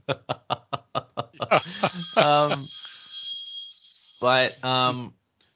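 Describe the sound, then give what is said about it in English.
A phone rings with an incoming call, a steady, high electronic trill lasting several seconds, preceded by a quick run of sharp clicks, while voices briefly talk and laugh over it. “You're getting a phone call. I'm trying to stop it.”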